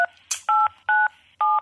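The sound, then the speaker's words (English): Several loud, steady two-tone beeps from a telephone keypad, each about a fifth of a second long with short gaps between, as a made-up phone number is dialed. “This is built off of seeing if how many people will just answer their phones cold.”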